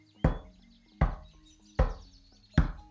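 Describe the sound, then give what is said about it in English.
Four firm knocks on a door, evenly spaced with short pauses between them, clear with no voices, only faint background chirping. “You have to knock on that door every single day.”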